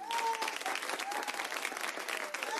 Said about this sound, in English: We should do a round of applause for you.